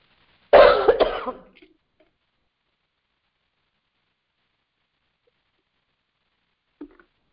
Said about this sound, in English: Just a minute, I'll drink a little water as I'm having a tendency to cough.